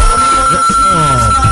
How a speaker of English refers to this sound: Oh boy, find out who on the phone. My phone always start ringing. And you know people start calling in from New York. They calling from Jamaica.